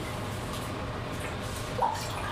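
Sparkling wine poured into a glass, a steady fizzing, trickling stream with a brief bright glassy clink near the end and no voices.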